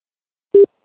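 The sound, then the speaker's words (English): A single short, steady telephone tone, like a ringback signal on an outgoing call, sounds clearly and alone against silence, cutting off after a brief moment. “Ah, yes, it's ringing.”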